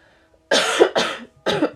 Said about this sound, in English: Ooh, I promise you, I took coughing medicine,